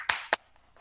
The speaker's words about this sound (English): Round of applause.